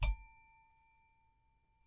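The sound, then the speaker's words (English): A single bright bell ding, from a bell a host uses to control a rowdy panel, rings out with a sharp strike. Its clear metallic tone then lingers and slowly fades over a couple of seconds, heard on its own. “To help me control my rowdy panel of recidivists and reprobates, I will employ what I have called the inappropriate bell.”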